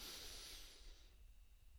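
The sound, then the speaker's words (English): A soft, airy rush of breath drawn in for about a second during a calming breathing exercise, then fading into quiet room tone. Gentle, with no talking. “So for one last time, breathing it all in”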